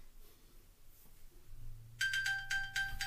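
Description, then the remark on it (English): A missing mobile phone's ringtone starts partway through, a bright electronic melody of quick repeated beeping pulses, fairly loud, over a low steady hum with no talking. “So can we talk about the fact that my phone is really missing?”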